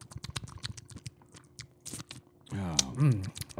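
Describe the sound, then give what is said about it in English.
Rapid wet clicks and smacks of a man sipping and swallowing a mild, smooth beer, loud in the mic, followed by a brief voiced sound at the end. “Man, I sound weird when I'm drinking. Like a chipmunk eating.”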